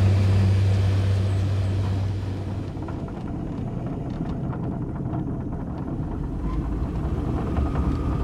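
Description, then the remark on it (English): A small electric aircraft with one battery down flies back to the airfield, heard as a steady, loud rushing drone with a low tonal hum that fades after the first couple of seconds. No one speaks. “Yeah, we're heading back. I've never had this happen while flying.”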